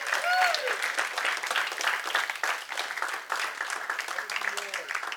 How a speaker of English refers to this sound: And first of all, why don't you clap for this miracle of God?